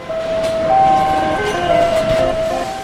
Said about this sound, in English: A modern car plant, by the way, sounds a lot like a casino. The automated gear plays these little songs to let you know that it's running. Driverless robot carts glide up and down the aisles like R2-D2 delivering doors and other parts.